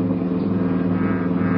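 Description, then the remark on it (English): A police cruiser's engine drones steadily, a loud, even rumble with a low hum running unbroken through the short stretch as the car rolls along at constant speed, cruising city streets at night in steady rain during a manhunt. “With a general description of the suspect, some of them were to travel on foot, some in cruiser cars.”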